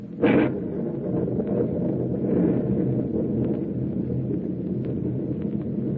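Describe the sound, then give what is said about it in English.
A storm at sea, rising in intensity, with rumbling thunder: a brief sharp crack at the start, then a steady, deep roar that churns on without a break. No voices are heard. “This storm is rising in intensity every minute.”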